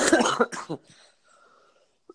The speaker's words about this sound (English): I thought my cough was better. It's just in my lungs now.